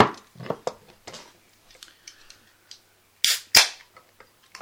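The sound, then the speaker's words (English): A long beer can opens with a sharp metallic crack followed by a quick, bright fizzing burst, after a few seconds of soft clicks and rustling handling sounds. “So this is a can rather than a bottle, although we said that already, but...”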